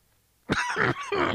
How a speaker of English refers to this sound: Man, I already stopped once. I don't want to stop again. This cough is still it's lingering. It comes and goes. Like before I started the podcast, I'd had no coughing at all.